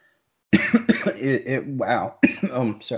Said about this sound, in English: Not a good time to cough. All right, after a little water there.